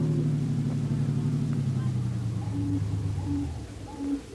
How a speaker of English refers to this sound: Don't drive so fast